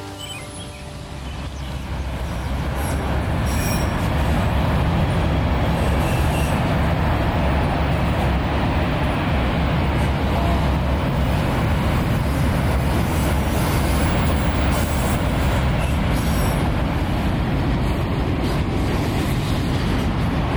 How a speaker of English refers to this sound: The sound of trains. I was hoping to hear the horn again. I love the horn. Whistle, whatever.